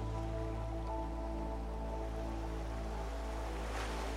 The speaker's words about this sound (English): sound of the waves soothing your mind.